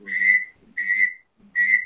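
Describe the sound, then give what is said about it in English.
Three quick, bright whistled notes, evenly spaced, from a widgeon duck call being blown, imitating the bird's whistle with a faint low buzz beneath each note. “But we always have a guy on a whistle.”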